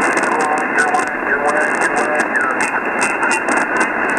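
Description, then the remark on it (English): A weak ham radio transmission, with a faint voice buried under steady hiss and repeated crackling bursts of static that pop in and out at an uneven rhythm. “but boy, the static crashes are pretty bad. Your signal's not real strong.”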